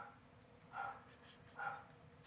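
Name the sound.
dog barking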